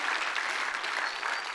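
A church audience at Heart of the City claps together in sustained, dense applause, a steady wash of many overlapping hand claps with no voices standing out.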